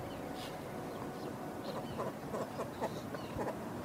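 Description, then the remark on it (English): Several short bird calls ring out at a whaling station over a steady rush of wind and outdoor noise, sparse, with no one speaking. “Just the sound of the birds.”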